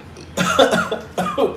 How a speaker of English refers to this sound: Those are super hiccups.